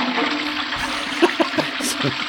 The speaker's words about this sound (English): Sorry, had to. We'll just flush that joke right down.